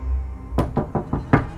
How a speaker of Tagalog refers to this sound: Tinungo ni Renz ang pinto ng CR at dito ay kinatok niya ang mga nandun sa loob.